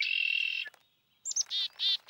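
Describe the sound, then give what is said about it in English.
A red-winged blackbird calls on its own, a sustained buzzy trill followed after a brief pause by sharp chips and two rasping bursts, clear. “On my left, red-winged blackbird.”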